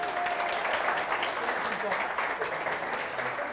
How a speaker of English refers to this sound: Give the man a round of applause.